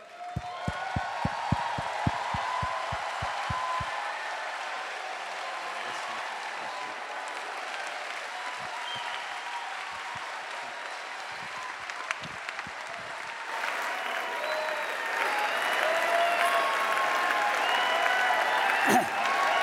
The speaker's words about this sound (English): And I thought it might be quite fun, as he gets up to really embarrass him, for us to stand and applaud him and say thank you. Can we do that?